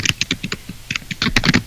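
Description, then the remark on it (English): Crisp computer keyboard typing in quick irregular bursts of clicky keystrokes, with a short pause midway before a faster flurry of taps. No voices. “I could definitely hear you typing, bro.”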